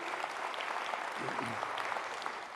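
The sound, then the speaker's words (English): A church crowd across its campuses applauds the worship leaders, musicians, sound, camera, lights and control room crew, steadily, a dense wash of many hands clapping at an even, sustained level, with a brief low murmur of voices midway through. “But can we just give them an incredible round of applause all across our campuses?”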